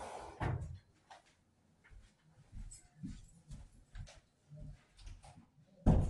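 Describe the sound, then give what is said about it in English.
A door is opened, with a sharp knock near the start, scattered soft thuds and rattles in between, and another loud clunk at the end. No one speaks. “I'm going to leave that door open.”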